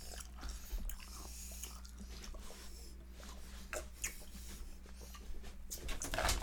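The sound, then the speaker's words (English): Wet chewing of a soft Birthday Cake Remix flavoured cake, with irregular smacking and clicking mouth sounds over a low steady hum. No one speaks. “That water wasn't enough to wash it down.”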